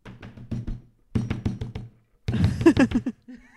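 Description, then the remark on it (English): A voice imitates a woman aggressively shaking a bathroom doorknob while trying to unlock the door, with three bursts of rapid, rhythmic clattering that grow louder toward the end, fairly loud. “Then she's in the bathroom just going, just aggressively... shaking a doorknob, just like.”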